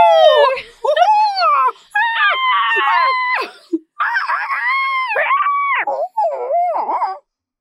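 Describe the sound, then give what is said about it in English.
A failed attempt at whistling with a dry mouth: a run of loud, squeaky, voiced tones that slide up and down in pitch, coming in about six uneven bursts with no clean whistle note. “Oh, that was a bad whistle.”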